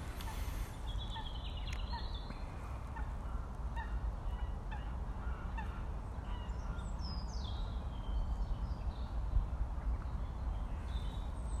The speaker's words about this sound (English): Feels like this is the final flurry of activity before sunset. The birds will be heading off to roost.